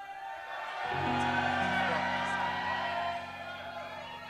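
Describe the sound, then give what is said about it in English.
A church audience shouts together during a sermon, a loud, dense swell of many voices that rises about a second in, holds for a couple of seconds, then eases off into softer murmuring. “You're shouting as if you don't want to shout.”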